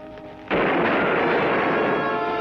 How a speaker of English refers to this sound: Sounds like someone's hitting his gun at something. It was two guns, Dick. Some of those shots were heavier than the others.